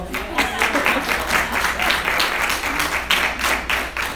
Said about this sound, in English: That's another clap moment.